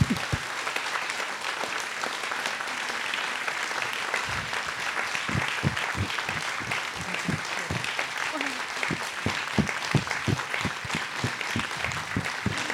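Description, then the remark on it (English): An audience claps steadily after a story is praised, a dense, crackling wash of many hands with sharper individual claps popping out, holding at an even loudness without fading. “Oh, yeah, please clap.”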